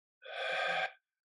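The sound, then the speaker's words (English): A single sharp, airy breath out, fairly loud, lasting under a second before silence returns, as a person breathes out all their air in a deep cleansing breath, bringing the navel to the spine. No voices are present. “Begin by breathing out all your air, bringing your navel to your spine.”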